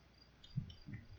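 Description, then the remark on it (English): A wasp buzzes faintly in a couple of short, low-pitched bursts, as if flying past. No one speaks, and only a soft background hiss fills the gaps. “Wasp is driving me crazy.”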